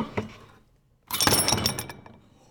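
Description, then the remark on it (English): A short metallic rattle as the chain of an old doorbell, about 4 feet high with a round metal handle, on display at Gallaudet University, is pulled, a brief pause, then its lead weight thumps down on the floor, followed by a bright ringing jangle that fades over about a second. “With that hit to the floor, I mean, we're listening to the chain, but that hit to the floor, you'd immediately get it.”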